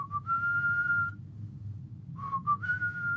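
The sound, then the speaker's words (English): A person whistles two short phrases of sustained, steady notes separated by a pause, with a slight upward slide at the start of each, over a low background hum, imitating a hobgoblin standing and whistling. “He's sort of whistling there, or standing there whistling, and going...”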